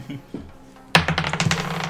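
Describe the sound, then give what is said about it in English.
Dice rolled for an investigation check in a tabletop role-playing game clatter onto a hard table surface with a sharp initial impact, followed by a quick series of rattling bounces and rolls that settle over about a second, fairly loud, totaling 11. “The dice definitely say no. It's 11 in total.”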